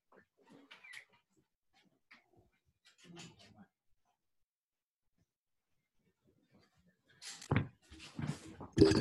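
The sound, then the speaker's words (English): A dog greeting at a door as it is opened and he is let in, quiet shuffling at first, then loud bursts of excited panting and snuffling over the final couple of seconds. “sorry, give me a second, I'm just going to open the door, my dog's greeting at the door here. Let him in.”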